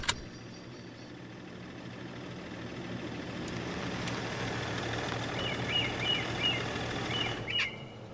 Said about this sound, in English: For now, I have to figure out where the hell I am, and if that noise my car is making signals an impending explosion.